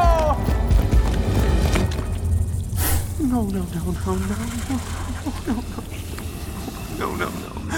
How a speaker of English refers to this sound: Snakes. Snakes, so many snakes. Well, yeah, it's the Hydra's lair. Of course it's guarded by snakes.